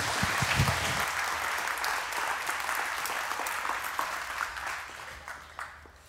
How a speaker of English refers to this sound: So man, give these guys a round of applause again. Thanks so much.